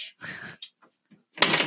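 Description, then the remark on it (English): A door is pushed against its frame but fails to latch: a few scraping, rustling bursts with short gaps between, ending in a louder, harsher shove. “Is that door not closing?”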